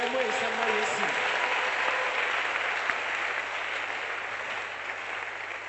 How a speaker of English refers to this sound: Come on, clap for Jesus.